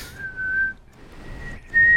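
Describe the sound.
A man whistles a clear, steady melody in old-school New York-style street whistling, holding long pure notes with brief pauses between phrases, fairly loud over a faint hum.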